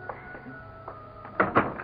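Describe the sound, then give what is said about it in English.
A door opens with a soft click early on, then two solid thunks as it swings and knocks against its frame, with faint rustling in between. “Let me get the door.”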